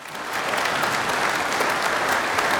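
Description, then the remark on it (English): A crowd applauds steadily, dense clapping that swells slightly at the start and then holds at an even, sustained level throughout. “You better clap for me, bitch.”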